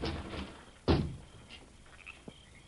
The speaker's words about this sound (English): It might be a trick. I'll kick open the door.